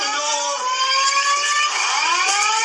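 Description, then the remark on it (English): A loud siren wails continuously, its pitch sliding slowly downward and then rising again, with no other sounds and no talking. “Now the sirens going off.”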